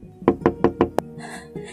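knocking

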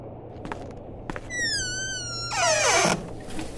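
door being closed

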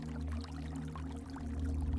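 rushing waterfall water

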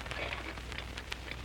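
scissors cutting hair

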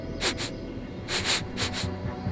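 person sniffing the air

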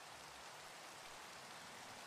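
rain

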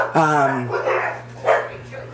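dogs barking

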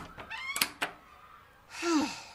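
closet door being opened

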